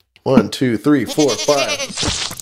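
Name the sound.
goats bleating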